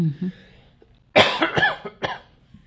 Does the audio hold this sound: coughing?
yes